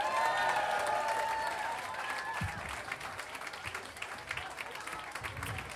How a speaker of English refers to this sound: Thank you so much for your applause, for your attention.